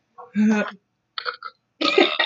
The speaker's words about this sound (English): oh gosh, excuse me, I had to burp.